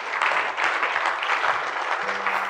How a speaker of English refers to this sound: Give the Lord a mighty clap up.